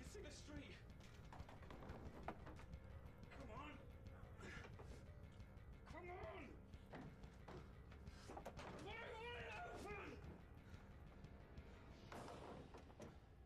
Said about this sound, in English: Maybe it's a sliding door.